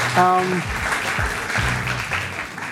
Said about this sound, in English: Round of applause as your debaters take a seat.